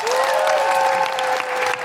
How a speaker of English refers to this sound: Big round of applause